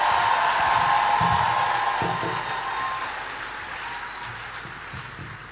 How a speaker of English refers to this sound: So with a resounding applause, let's welcome Mr. Fela Durotoy.